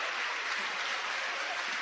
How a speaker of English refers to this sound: and a cheer from the crowd. A standing ovation. The West Iron County team is up and applauding, as well as the Westwood and the fans.